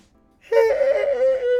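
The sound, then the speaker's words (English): A long, loud vocal yawn: a breathy intake that swells into a sustained, slightly falling moan lasting just over a second after a brief silence. “Cut that out, please, that yawn.”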